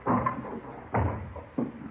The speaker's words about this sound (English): Doors open. Let's have a look.